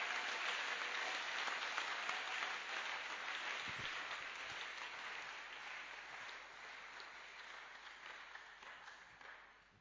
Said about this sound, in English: Clap your hands for the Lord. Oh, give the Lord a wonderful clap of hands.